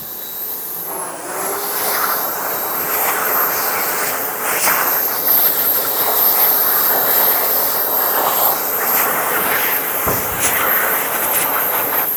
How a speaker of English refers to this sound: Just capturing that moment, a rare moment of a hand dryer on a football ground that actually works. I wonder what that sounds like in the microphone.